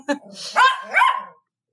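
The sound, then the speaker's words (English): A family's puppy, had for about a year and a half, barks twice in quick succession, high-pitched and yappy, with a brief muffled sound just before and then silence. “And then our puppy, who we've had for about a year and a half.”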